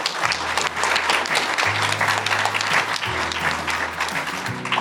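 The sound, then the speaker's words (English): Steady, dense applause from a sizable audience at a live evening event, loud and continuous, clapping throughout for the students, with a low hum underneath. “Give the students a round of applause.”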